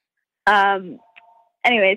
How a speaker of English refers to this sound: Sorry, there's like a phone ringing in my house.